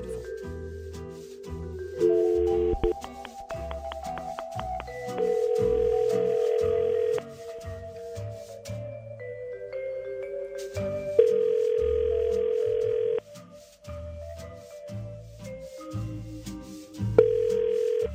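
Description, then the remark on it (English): An outgoing call's ringback tone, placed to a possible contest winner, sounds in long, steady electronic bursts about two seconds each, repeating three or four times at regular intervals over a rhythmic background bed, fairly loud. “Here we just have to wait with bated breath and hope they answer the phone when it rings momentarily with a winning phrase.”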